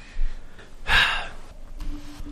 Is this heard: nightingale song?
no